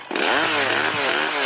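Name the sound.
chainsaw revving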